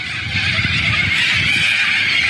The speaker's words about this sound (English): But listen to this. These are all these cockatoos, and they invaded this entire neighborhood in Australia.